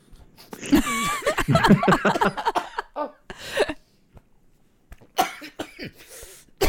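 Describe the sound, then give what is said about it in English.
A person coughs hard several times in close succession, then clears their throat with a few rough, raspy bursts separated by short pauses, fairly loud. “Are you choking there? Cough it up.”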